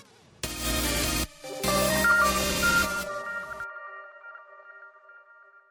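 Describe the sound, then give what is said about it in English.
Loud electronic alert tones from a phone and computer blare in two close bursts, harsh and buzzy, then leave a few clear ringing chime notes that fade away over several seconds. “My computer just exploded. So did my phone.”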